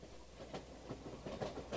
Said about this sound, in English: You can tell it's about a train because they have a little choo-choo sound here at the beginning.